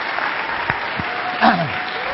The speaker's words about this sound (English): I want us to give him a better applause than that.